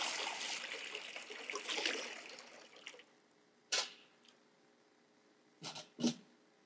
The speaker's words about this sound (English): This is the water of repentance.